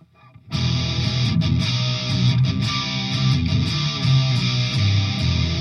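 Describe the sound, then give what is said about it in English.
A heavily distorted electric guitar played through a Supra distortion pedal, with the tone and distortion set at noon and the volume turned up, starts abruptly. It plays thick, bass-heavy chords with fuzzy sustain, loud and steady, without any voices. “But I got the Supra distortion is actually quite a bit louder than the DS1.”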